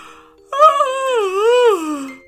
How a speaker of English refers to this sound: Gregory woke up with a big yawn.